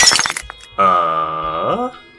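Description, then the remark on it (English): A short burst of crackling, splintering glass, followed by a long sustained tonal note that holds steady and then slides downward before cutting off. “All of you hear the sound of glass cracking.”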